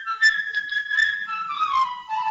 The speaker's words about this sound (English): And this tale is going to be told by a cast of musical instruments, a different instrument impersonating a different character. The bird will be played by a flute.